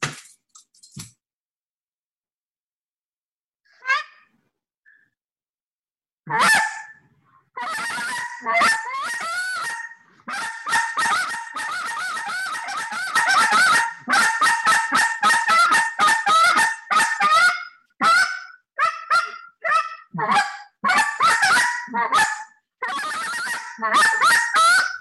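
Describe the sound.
A hunter's goose call is blown loudly in rapid bursts of sharp, nasal honks and clucks, with a few quiet ones at first and then a fast, steady stream with short pauses.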